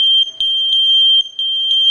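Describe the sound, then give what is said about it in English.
A Kidde wireless smoke alarm blares a loud, piercing high-pitched tone, steady and continuous with slight pulsing dips, with no voices over it. “Listen to the sound of a safer home.”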